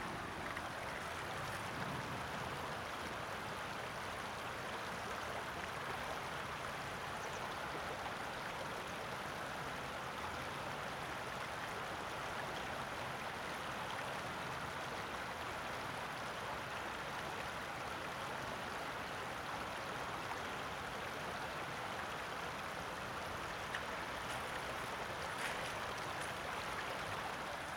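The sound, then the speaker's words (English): River rapids pour steadily over stones beside a stony beach, a continuous full-bodied roar of churning water with no pauses and no voices, holding an even intensity throughout. “So I'm walking across the stony beach to some rapids. I'm just going to listen to the song of the river for a little bit.”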